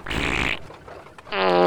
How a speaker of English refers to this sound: 20 minutes later, we were in a buggy being pulled by a horse. It wasn't exactly the express train. And the worst part was, every bump in the road set off Mr. Snodbottom's bowels.